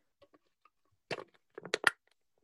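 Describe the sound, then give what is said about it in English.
A rusty metal can being crunched: a few faint taps, then a harsh crunch followed by a quick cluster of sharp, crackling crumples, with no one talking. “ASMR can crunching.”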